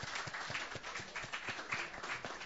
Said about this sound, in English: So thank you so much for putting together such a quality event. Very cool. Yeah. Round of applause. It's a lot of work.